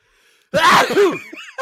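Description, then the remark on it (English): A single loud sneeze bursts out after a moment of near silence, a sharp voiced blast that trails off into a softer breathy tail and a quick sniff. “Bless you.”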